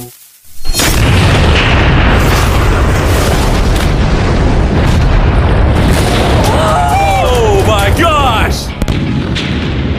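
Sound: massive explosion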